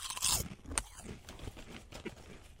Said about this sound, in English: Okay, here we go. Here we go. Let's see if how the crunch comes out on the radio.